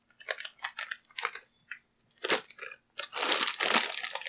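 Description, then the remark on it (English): Crisp, brittle crunching of horse meat flavored potato chips being chewed, a series of sharp bursts for a few seconds, then a louder, sustained stretch of crackling crunches at the end. No one speaks. “So, horse meat flavored chips.”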